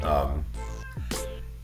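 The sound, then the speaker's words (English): A female cat meows, a short whiny cry that bends down in pitch, with other tonal sounds and a steady low hum around it. “My cat was doing something stupid.”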